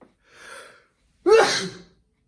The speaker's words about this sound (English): Excuse me. I might cut that sneeze out. I might not have time to. We'll see.